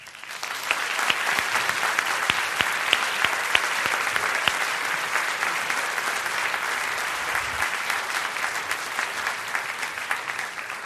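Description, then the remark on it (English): A crowd applauds steadily for the full stretch, welcoming debaters to the stage, a dense wash of clapping with sharp individual claps popping out, holding an even level without fading. “So let's please welcome our debaters to the stage.”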